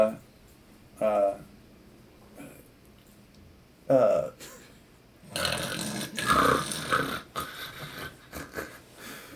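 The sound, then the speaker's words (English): A person imitates snoring: two short, throaty snorts separated by quiet, then a longer, louder rasping stretch of fake snore sounds that trails off. “Alright, so as you are fake snoring, which sounded like I've heard real people snore.”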